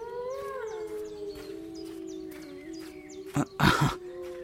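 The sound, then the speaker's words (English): Real wolves of a pack howl, calling, in long, wavering overlapping tones, then two short, harsh, noisy bursts, like growls or rough breaths, break in near the end. No one speaks. “that's just wolves, silly.”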